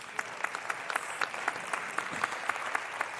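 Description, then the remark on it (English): Steady audience applause, a dense wash of clapping with sharper individual claps popping out at a quick, irregular rhythm, moderately loud and continuous throughout with no voices on top. “So you should definitely clap for that.”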